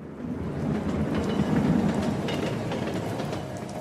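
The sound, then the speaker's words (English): A train rolls past on the tracks with a steady, heavy low rumble and faint rhythmic clatter, holding at an even loudness throughout with no voices. “A treehouse sits behind two houses, backdropped by apartment buildings and a railway line.”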